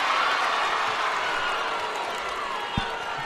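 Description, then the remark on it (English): A Trinity basketball crowd in a gym roars in a steady, loud wash of voices, wanting a foul on a play that was called a travel. A single short thud briefly stands out near the end. “And the Trinity crowd wanted a foul on that play, but the call was a travel, and Handley will get possession with a three-point lead, 41-38, 2:45 left to play.”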